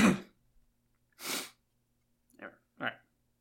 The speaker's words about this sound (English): I had to cough.